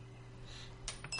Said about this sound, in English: But for every quarter that I bounce into that glass, you're going to tell me one thing that's bothering you.